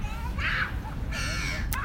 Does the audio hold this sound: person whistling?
no